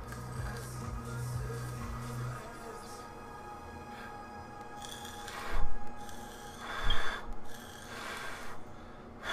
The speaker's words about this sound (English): There's like shit on the top that's burning. Mm. You hear it crackling?